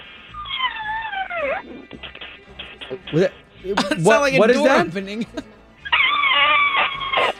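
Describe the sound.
A contestant's voice imitates a strangled cat, a strained, wailing screech used as his buzzer sound for a quiz showdown. It comes twice, once at the start and again at the end, with people talking in between.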